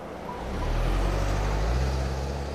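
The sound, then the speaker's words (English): A car rolls at a steady pace through a snowy suburban Detroit neighborhood, its low engine rumble swelling slightly and then easing off, with a soft hiss of road noise and no voices. “A car rolls silently through a snowy suburban Detroit neighborhood.”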